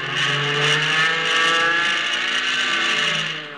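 A loud, steady aircraft engine roars throughout, its pitch shifting slightly as the plane strains through a loop to get behind a pursuing aircraft, with no voices present.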